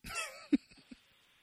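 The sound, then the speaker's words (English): A fairly quiet cough: a breathy rasp followed by a sharp throaty burst and a smaller one after it, with no other sound around it. “Just even a cough.”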